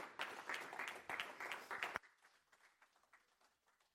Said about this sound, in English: Why don't we give them a hand clap of appreciation as they come.